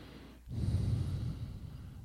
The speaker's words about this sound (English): are you breathing like into the microphone? I keep hearing like breathing.